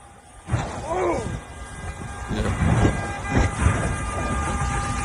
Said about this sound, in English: I don't know why we're honking. I can't nobody go nowhere. It's probably the horn stuck from the wreck.